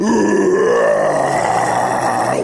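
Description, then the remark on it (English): A person imitates a roar, letting out one long, sustained roar in a gravelly, throaty voice, loud and steady for a couple of seconds, pitch rising slightly partway through before holding. “Why aren't you roaring? One big roar, one roar. There you go.”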